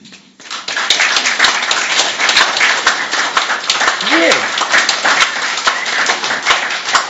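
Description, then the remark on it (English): A crowd bursts into sustained, dense applause, clapping their hands for God during a sermon, many hands clapping loudly and steadily for several seconds, with a brief voiced cheer or shout rising partway through. “Let's give him a hand.”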